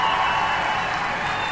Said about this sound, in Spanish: ¡Démosle otro aplauso a los rayos del campo!